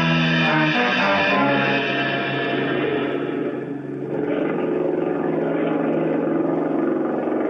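An outboard motor runs steadily in a garage for several seconds, a loud, buzzing drone with a constant pitch and no breaks. No voices are heard.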